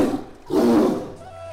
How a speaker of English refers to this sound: You strut about, soaking it in, and then you hear a tiger growl.